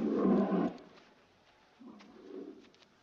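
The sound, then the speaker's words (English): Two low, moaning wolf howls, a short one followed after a pause by a longer, wavering one, heard on the moors with no talking. “So eventually this wolf sound circles them, catches them, and kills his friend Jack.”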